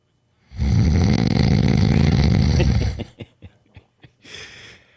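A man snores loudly and deeply in one long rumbling, rattling breath, followed by a few short snorts and a softer exhaled breath at the end.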